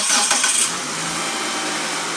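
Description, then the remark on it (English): A Mitsubishi Magna's engine cranks with a short, rough burst and catches, then settles into a steady idle hum. No one speaks. “Well, that sounds like my Mitsubishi Magna.”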